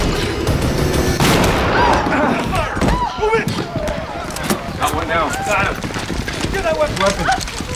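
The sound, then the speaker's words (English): A rapid series of sharp gunshots cracks out in irregular bursts, loud and percussive, while people shout and talk over the gunfire; a skeet shooter fires at a suspect as a door is yanked open, hitting him in the shoulder. “I'll shoot, do you hear me?”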